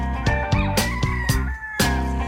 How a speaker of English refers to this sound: It's 4 in the morning and the rooster is starting to crow.